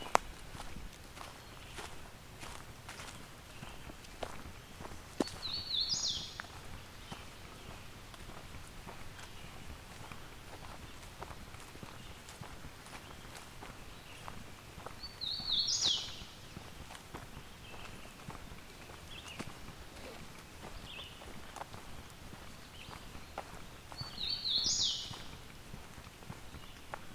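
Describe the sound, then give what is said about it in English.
A hooded warbler sings three short, bright phrases spaced roughly ten seconds apart, clear, over the steady crunch of footsteps walking, at the Fisher Tract at 8:30 a.m. on June 21st. “It seems this year I'm having no trouble finding hooded warblers.”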